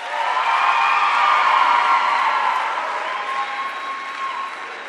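crowd, audience applause and cheering

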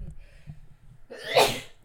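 human body sound, sneeze

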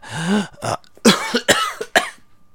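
human body sound, repeated coughing

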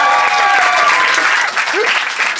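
crowd, audience applause

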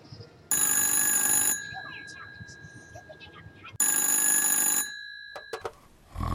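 signal or alarm, telephone call ringing

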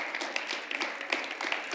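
crowd, audience hand clapping

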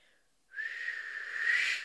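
human body sound, person attempting to whistle

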